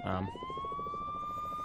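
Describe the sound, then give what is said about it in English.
A police car siren wails as police cars with their lights on approach through traffic on a two-lane highway, its tone sweeping upward and then holding a loud, steady high pitch, with a rumbling, pulsing low noise underneath. “How good are the police cars getting close to us?”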